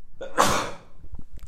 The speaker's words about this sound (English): And there we go. I don't edit this podcast. I don't edit the podcast. I keep it real and raw. So, yep, that was me sneezing, not into the microphone.